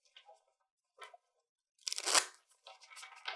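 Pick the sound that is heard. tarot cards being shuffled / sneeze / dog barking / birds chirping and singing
tarot cards being shuffled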